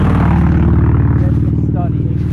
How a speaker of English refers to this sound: Probably sounded like a race car, you're thinking, but that was a freaking minivan. Did they saw the exhaust off the minivan? What the heck?